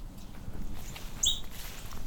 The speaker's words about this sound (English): It's a northern cardinal call.